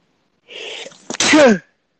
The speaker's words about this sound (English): Excuse me, I have a sneeze coming up. Ugh, hate that.